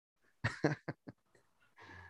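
A person coughs four times in a quick burst, the first two harsh and loud, the last ones weaker, followed by a brief rough breath.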